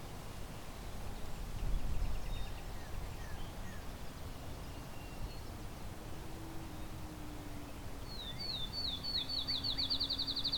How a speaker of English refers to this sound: Fairly close up field sparrow.